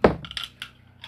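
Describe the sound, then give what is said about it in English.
Dice drop onto a hard surface with a dull knock, then clatter and tick a few more times as they bounce and settle, fairly quiet. “Hey, that is my dice.”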